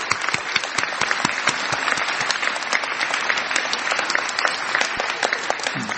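An audience gives a round of applause for the person who set up the event, clapping steadily throughout. A dense wash of many hands applauding at an even, sustained level with no voices standing out.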